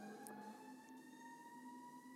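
An ambulance siren wails steadily, a faint sustained tone as it passes outside, with no talking over it.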